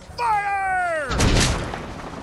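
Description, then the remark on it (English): In a naval battle, a cannonball whistles in on a falling tone, then a loud boom and splintering crash as it smashes through the wooden side of a ship, followed by a lingering rumble. No one speaks. “The cannonballs smashed through the wood sides of the ship, sending massive splinters of shattered timber hissing through the smoky air.”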